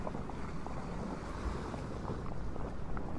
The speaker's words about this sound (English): the wind picked up and the boat sharply bowed to a watery blast. The vessel gored the waves, sending foam splashing on all sides.